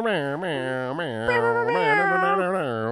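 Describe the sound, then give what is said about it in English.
A human voice imitates a cat meowing, drawing out a series of wavering, nasal meow-like cries that rise and fall continuously for a few seconds, fairly loud. “It's like, fun, though, I literally sound like a cat meowing.”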